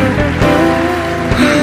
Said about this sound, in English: Oh yes, we give the Lord a mighty hand clap.